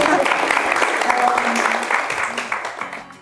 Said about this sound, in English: Thank you so much. A bit of a round of applause for your, you know, high fives.